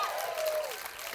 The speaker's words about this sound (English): If you believe that, give Jesus a shout and a hand clap. Amen.